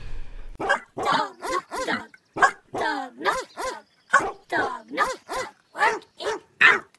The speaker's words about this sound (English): Yeah, it is a dog, yes. What color do you think it is? Pink. Rainbow. It's an American Eskimo. It's white.